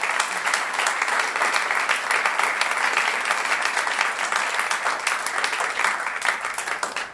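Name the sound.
round of applause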